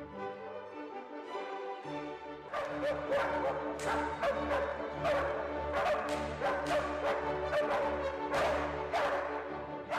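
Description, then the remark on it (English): Dogs bark and yip in a loud, uneven string of sharp yelps set against sustained orchestral music of violins and cellos, the barking starting a couple of seconds in and continuing without pause to the end. “the rhythmic abilities of the dogs seems to be a little bit lacking, I feel.”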